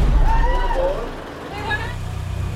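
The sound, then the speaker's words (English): Steady low engine rumble inside a moving party bus during a hen's party, with indistinct chatter and voices rising and falling over the drone throughout. “We're on a party bus trying to find out what it is that makes female voters tick.”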